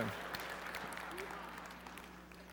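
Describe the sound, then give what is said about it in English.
An audience applauds a singer in the middle of a song, in a steady, dense wash of applause that holds fairly even throughout and tapers slightly toward the end. “Oh, you applaud, you get another verse.”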